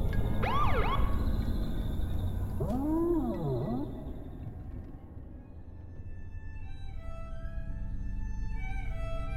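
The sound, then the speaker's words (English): Two short siren whoops from a sheriff's deputy car flashing blue and red lights behind a driver on a wooded road, each a quick rising-and-falling wail, ring out over a low rumbling hum, followed by fainter steady high tones. No one speaks. “I was about a mile from home when the blue and red lights of the sheriff's deputy flashed behind me.”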